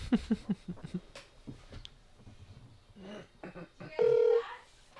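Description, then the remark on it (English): A rapid string of phone keypad dialing beeps plays, followed after a pause by a loud, steady ringback tone of a call connecting, with no one talking. “Yeah, let's just give him a call.”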